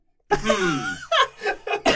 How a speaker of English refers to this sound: Do you need to clear your throat? No.